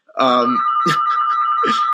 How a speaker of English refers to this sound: Sorry about the phones going off in the background right now.